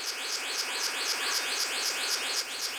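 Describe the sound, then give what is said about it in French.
A male blue bird-of-paradise courtship call as it seeks a mate: a steady, rhythmic series of high, buzzy rising-and-falling pulses repeating about every quarter second, continuous, with no voices. “Un paradisier bleu mâle en quête d'une compagne.”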